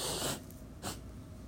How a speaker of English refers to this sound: I said I was going to blow my nose 30 minutes ago.